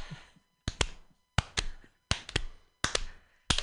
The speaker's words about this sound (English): We should start a slow clap.